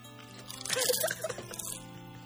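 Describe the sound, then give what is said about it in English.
A crisp crunch of someone biting into Lay's potato chips, a short burst of crackly chewing lasting about a second before fading to quiet. “Wait, let me get another bite in there.”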